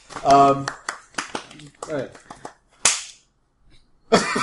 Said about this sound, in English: Did you just slap him? Sometimes I think it was supposed to be an applause, but you just did the one, and it looked kind of like you were intimidating all this to the table. Sometimes science needs to slap.